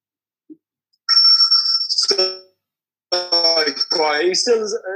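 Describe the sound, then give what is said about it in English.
A phone ringtone plays loud, a bright electronic melody in two bursts separated by a brief pause, with no one talking over it. “What's that stupid ringing?”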